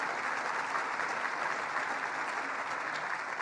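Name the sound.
round of applause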